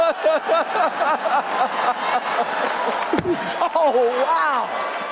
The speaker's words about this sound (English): Right, so unless you've been living under a rock for the past 24 hours, you have seen the slap.